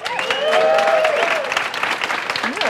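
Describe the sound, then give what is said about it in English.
An audience at a live stage event claps and cheers loudly for a few seconds, with dense steady applause and rising whoops and shouts over it. “They sound louder than they look.”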